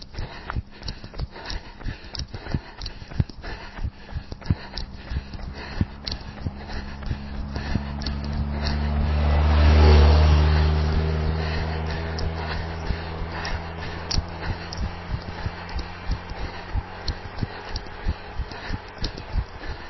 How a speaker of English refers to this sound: I see now there's a car behind me as well.